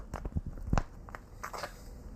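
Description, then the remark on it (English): Old mayonnaise squeezed from a squeezy bottle in a kitchen while old condiments are cleared out of a refrigerator: a run of irregular wet, sputtering squirts and pops, one stronger burst partway through, then thinner hissing squelches as it trails off. “You can hear the squeezing sound of old mayonnaise coming out of a squeezy bottle.”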